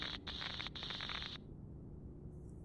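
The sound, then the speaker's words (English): Harsh radio static from solar interference crackles in choppy, stuttering bursts for about a second, then fades into a steady, duller hiss with no voices. “I'm told to expect more solar interference, but I believe we're done here.”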